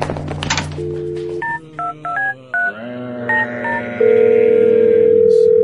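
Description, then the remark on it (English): A series of short, evenly paced touch-tone beeps as a phone number is punched in, ending in a steady, loud dial or ringback tone, over a low background hum. “I have a phone call to make.”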